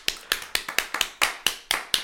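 Hand clapping to celebrate sealing a winning record on the season, about nine sharp claps in a loose, slightly uneven rhythm, crisp and bright, with no talking over them.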